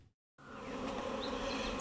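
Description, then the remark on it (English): A dense, steady drone of many honeybees buzzing from an opened hive during a spring hive check, starting abruptly after a brief silence and holding loud and continuous, with a few individual bees whining past. “I've looked in the bees and opened them up this weekend, which means taking out the floors, having a look in the top, checking that they're all right, moving any frames to the outside that might need replacing, and then putting on a queen excluder”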